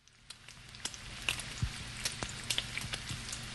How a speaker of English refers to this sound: Sizzling.